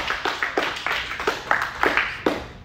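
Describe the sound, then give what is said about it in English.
An audience gives Jesus a hand clap, clapping together for a few seconds: a dense patter of many hands with sharper slaps standing out irregularly, steady and moderately loud, with no voices over it. “Give Jesus a hand clap.”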